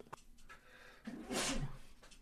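A single sudden sneeze with a sharp, breathy burst of hissing noise after a brief intake, lasting under a second before fading out.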